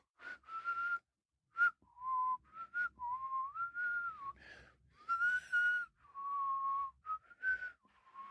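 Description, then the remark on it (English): A person whistles a wavering tune on the exhale, a series of clear, breathy notes rising and dipping in pitch with short pauses between phrases, no talking. “But then today I was whistling out on the exhale, which I usually can't do.”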